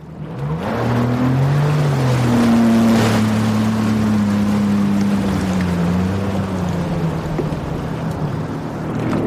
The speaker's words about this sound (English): All right, let's get changed. Let's go get on some jet skis. Get on some jet skis. Let's go get on some jet skis.